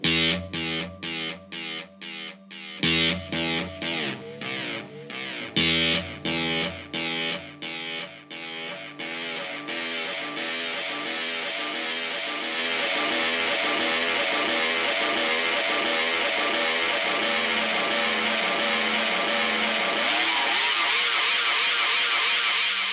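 Electric guitar played through an echo delay pedal with echo sustain, modulation, recording level, mix and echo delay controls and no repeat-count setting: a few sharp strummed chords with repeats that pile up into a dense, sustained wash of echoes, loud with no talking.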